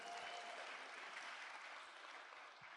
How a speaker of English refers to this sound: everyone give a round of applause to Alex Bennell, our sound guy. Go, Alex.